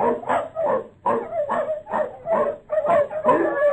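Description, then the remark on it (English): Seven newborn puppies in a shed in the piney wood country of Mississippi yip and whimper in quick, high-pitched bursts, several small cries overlapping in a steady, restless chorus with no talking. “We come to see Bonnie Blue's new puppy.”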